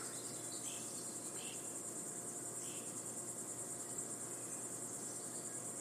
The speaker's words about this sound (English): Okay. And they can soak in the crickets. They can soak in the Carolina heat because, it's thick.